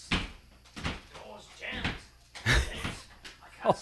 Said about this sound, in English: The door's jammed. I can't seem to get out.